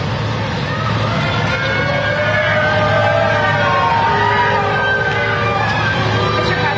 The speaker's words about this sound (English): You know, they have to keep separation from him and the masses, but you could hear him being booed, and he just turns around and waves at him.